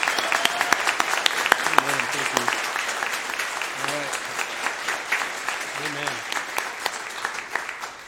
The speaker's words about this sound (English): would you stand up and give them a round of applause?